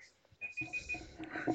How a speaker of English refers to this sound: And that is Sean's clock.